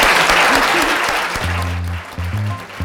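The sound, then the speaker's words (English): A crowd claps steadily in dense, continuous applause at the end of a talk, loud, with a few low tonal hums and voices faintly mixed underneath. “And please join me in a big round of applause.”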